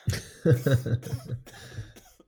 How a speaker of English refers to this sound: I'm gonna have a cough, I'm gonna turn my microphone off.